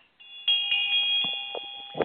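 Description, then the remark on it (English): A small hand bell is rung during a ritual by a person circling a henge sunwise, several times in quick, uneven succession, its bright metallic tone sustaining and overlapping between strikes, clear with no voices. “Lady of the Field, then circles the henge deosil and rings the bell.”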